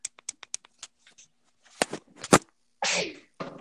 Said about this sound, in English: Okay, so let me sneeze. 1 second. I gotta sneeze.